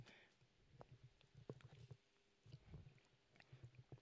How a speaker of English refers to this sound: I'm going to take a sip.